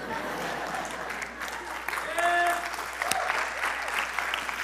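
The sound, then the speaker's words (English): An audience applauds steadily for several seconds, dense overlapping clapping, with a brief whistle-like cheer rising midway and the clapping swelling slightly toward the end. “You can clap.”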